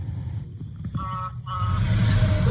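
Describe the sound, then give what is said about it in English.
A semi truck rumbles past, its deep engine drone swelling louder toward the end, with a brief high whine cutting through midway. No one speaks. “Semi drove by.”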